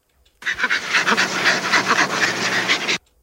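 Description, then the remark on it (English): A chimpanzee laughs in rapid, breathy panting bursts with snorting sounds, loud, a steady rhythmic run of pants lasting a few seconds with no talking. “Is that a dog? That's what I thought. No, it's a chimp.”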